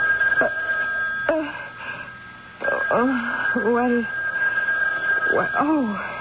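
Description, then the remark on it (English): A telephone rings with a steady, continuous high tone throughout, while wavering, howl-like vocal sounds rise and fall over it several times. “It's a phone.”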